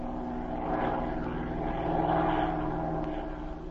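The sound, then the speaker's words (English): A chartered propeller airplane drones steadily in flight over the countryside, its engine a loud, continuous buzzing hum with a faint rise and fall in intensity, heard on its own with no talking. “He advised her to notify the authorities of both countries and to charter a plane, cross the border, and make a close survey of the countryside from the air.”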